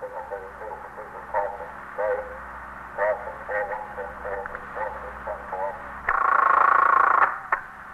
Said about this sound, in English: The stillness was broken occasionally by the hum of the switchboard or a call over the monitor of KEA, the police radio.